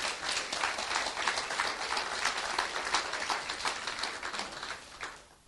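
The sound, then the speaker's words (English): An audience applauds steadily, a dense wash of many hands clapping at an even level for about five seconds, then quickly thinning out and fading away at the end. “So I think it's a wonderful opportunity just to applaud your angel now, please.”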